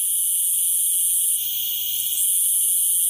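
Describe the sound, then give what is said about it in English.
A chorus of Brood IX periodical cicadas, emerged for the summer to mate, drones in a loud, steady, high-pitched buzz that holds for the whole stretch, wavering only slightly midway, with no voices. “They'll be back in force this summer for a mating melee, but once they've done their deed, they'll die within a few weeks.”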